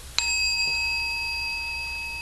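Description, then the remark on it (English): A single bell is struck once to mark the end of a meditation sitting, its clear metallic tone ringing out and lingering steadily for a couple of seconds without fading much. No voices are present. “can you hear the sound without making up the story bell? End of sitting, time to get up. Oh, I'm so glad he rang it.”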